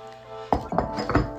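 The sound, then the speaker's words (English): Wax from a candle that just went out being dumped into a container: three or four dull, hollow knocks and clunks in quick, uneven succession over a faint steady hum, with no voices. “I need to get this wax out of here.”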